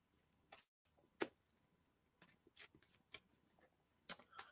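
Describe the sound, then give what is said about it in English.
A deck of cards being shuffled: a series of crisp, papery riffles and slaps at irregular intervals, with quiet pauses between them and no talking. “So just shuffling.”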